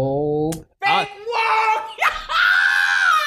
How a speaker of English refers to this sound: Whoa! Ugly! You know I have to edit that now, right? No, you leave it in there. No, because you yelled.